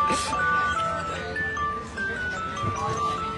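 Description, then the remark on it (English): A tinkling ice cream truck jingle plays as the truck goes by, its thin melodic tones drifting over steady street noise, with some talking in the background. “it's an ice cream truck going by.”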